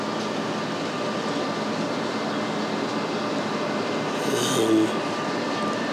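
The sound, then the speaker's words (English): Steady outdoor ambience outside a university train station with a big parking garage, recorded on Monday, July 4, 2016: a broad continuous rumble and hum with a brief brighter swell of mechanical noise partway through, no voices present. “Outside of the train station at the university, the one with the big parking garage.”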